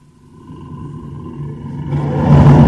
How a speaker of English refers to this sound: There it is, and he sounds powerful tonight. Wow. Very aggressive bear. Back, bear. Get back.